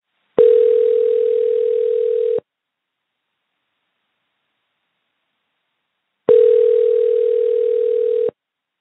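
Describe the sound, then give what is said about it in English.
A telephone ringback tone sounds twice, each steady electronic buzz lasting about two seconds with a long silent pause between, as a call to a woman in California rings before anyone picks up. “After 7 weeks and thousands of phone calls, I think I found her.”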